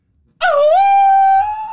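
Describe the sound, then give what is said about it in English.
A person imitates a wolf howl: one loud, sustained note that dips briefly in pitch, then holds steady and bright for over a second with no talking. “Now that I think about it, I'm like, this doesn't sound anything like a wolf.”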